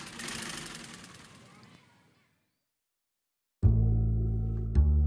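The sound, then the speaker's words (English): A Singer sewing machine whirs with a rough, rattling texture that slowly winds down into silence, then a loud, steady low-pitched motor hum starts abruptly, broken by a single sharp click near the end. “the whirring sound of a Singer may seem to belong to another era.”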